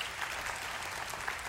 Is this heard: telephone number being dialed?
no